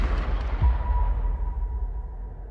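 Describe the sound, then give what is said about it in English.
A single rifle gunshot cracks out at the start, then a deep booming rumble slowly fades away over a couple of seconds, with no voices present. “The rifle is an extension of me. 1, 2, 3, 4, 5, 1, 2, 3, 4, 5. And I strike you down. I know where you are now. Bang.”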